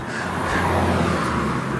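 A loud car roars, its engine noise a dense, steady rumble with a low hum that holds at about the same level for under two seconds, with no voices.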